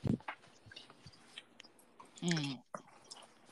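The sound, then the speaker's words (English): Chewing of food while eating, with irregular wet clicks and soft crunches, broken by a short voiced hum or murmur partway through. “Dog's in the way and I'm trying to eat.”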